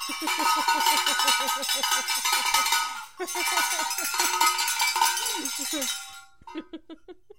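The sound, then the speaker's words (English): A cowbell clanks rapidly and repeatedly in two loud bursts, with a brief pause between them, then a few sparser strikes trail off at the end. “That gets cowbell. More cowbell.”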